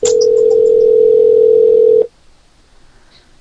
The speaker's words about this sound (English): listen to the phone ringing.